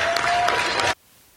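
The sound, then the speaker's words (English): Dense, steady applause from an audience, a broad burst of many hands clapping at once that holds for about a second and then cuts off abruptly into near silence. “Once again, clap it up, clap it up.”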